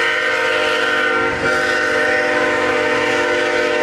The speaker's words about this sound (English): Yeah, we're going to lose sound a little bit because the train.